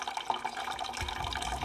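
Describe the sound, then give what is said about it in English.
Water runs steadily into 20-litre plastic bottles as villagers in Michurinsky draw muddy river water, a continuous splashing gush with a hollow, bubbling tone that deepens slightly near the end, heard alone without any talking. “Once the villagers draw the river water, they have to leave it out for several hours in containers like these 20-litre plastic bottles until the dirt settles.”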